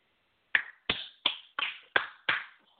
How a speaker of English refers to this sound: Shit, I can give a hand clap for that.